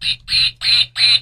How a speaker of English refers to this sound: That's a duck.